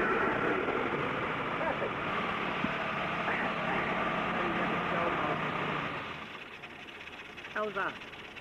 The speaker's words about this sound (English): How's that? Sounds very nice. Good little engine in that car, definitely.